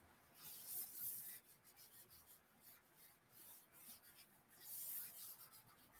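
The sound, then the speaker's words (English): Steady scratchy rubbing of a pencil on paper, continuous strokes swelling and easing in loudness over several seconds, with no voices. “Oh, I'm using the wrong side of the pencil again, you guys.”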